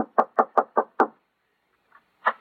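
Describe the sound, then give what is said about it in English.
Six quick, evenly spaced knocks on the wooden door of an old prospector's house ring out loud, followed by a short pause, a faint thump, and one final knock. “this must be the house where the old prospector lives. Yeah, knock on the door.”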